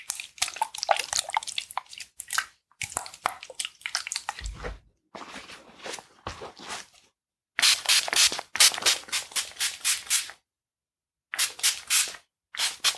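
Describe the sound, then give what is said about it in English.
Repeated bursts of hissing, wet spray as cleaning solution is sprayed onto a shoe, with no talking, in several runs. The later runs pulse in a quick, regular rhythm, like a trigger sprayer pumped over and over. “and then we're going to spray the second shoe.”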